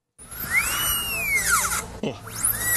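A dentist's drill, recorded at the dentist while the dentist was using it on a patient, whirs in a steady, piercing high whine, its pitch sliding up and down as it speeds and slows, with a brief dip near the end. No voices.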